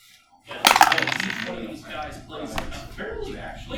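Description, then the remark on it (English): Dice rolled during a tabletop game clatter down through a dice tower, a bright burst of hard rattling and knocking near the start, then softer clicks and taps as they settle. “Okay, we're going to attempt to use the disused dice tower.”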